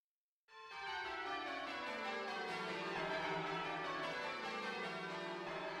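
Loud, continuous clangor of many tower bells ringing at once in the ringing chamber of the Warden College Bell Tower, rung by a 13-armed robot, overlapping strikes blending into a dense, resonant wall of sound with no voices.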